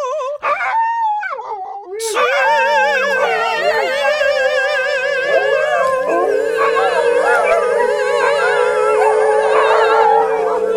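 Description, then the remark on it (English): A chorus of fourteen dogs howls together, loud, with wavering overlapping pitches that swell and persist for about ten seconds after a brief opening yelp. “There's now 14 dogs in here.”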